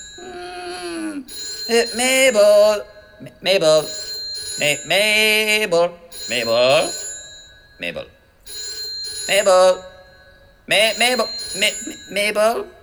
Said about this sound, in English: The phone's ringing.